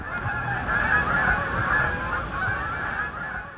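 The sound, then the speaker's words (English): A flock of geese honks continuously in New York City, many overlapping calls blending into a steady, fairly loud clamor with no pauses and no voices. “Living in the city, my bird Rolodex mostly consists of pigeons. Well, and geese.”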